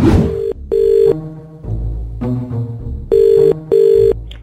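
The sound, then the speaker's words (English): A phone rings in two double bursts of steady electronic tone, with a low muffled hum between them, loud as if heard through a call line. “Yeah, and also, you better enjoy listening to this phone call, because it'll be maybe the last 2 minutes you have working here.”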